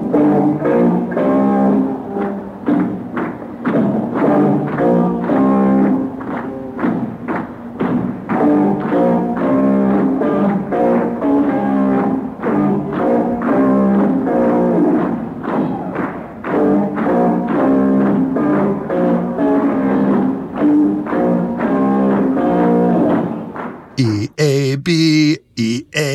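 Loud, heavy rock guitar chords chug through a song's riff in a steady, punchy rhythm for over twenty seconds, then break off abruptly into a brief garbled burst at the end.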